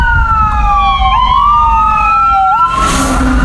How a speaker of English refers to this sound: Fire. Is it just fire trucks, or is it? Yeah, just fire truck.